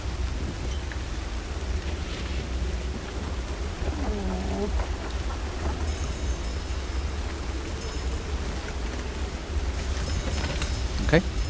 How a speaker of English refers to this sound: And it's just a complete deluge. It just seems to have hit the island. It's like it's just like spread, like swept across it. And you see it actually sweeping across the island as the rain pounds through leaves of the treetops.